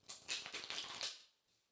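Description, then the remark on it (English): Tarot cards are shuffled in a quick, crisp riffle of papery flutters lasting about a second, then trailing off into a soft, faint rustle. No one speaks. “Connecting to the cards by listening to the sound of them being shuffled.”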